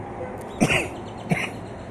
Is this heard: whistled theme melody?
no